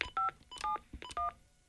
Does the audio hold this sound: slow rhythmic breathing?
no